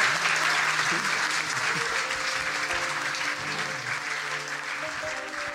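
A large audience at the Black Box, at the Northern Ireland Science Festival, claps for the guests in a sustained, dense round of applause, loud and steady throughout, with faint voices and whoops mixed underneath.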